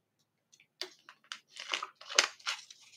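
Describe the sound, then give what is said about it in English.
Someone drinks water, with a series of irregular crinkly, crackling bursts like a plastic bottle being squeezed and handled, rising in loudness over a few seconds with no talking. “I'm going just to drink some water.”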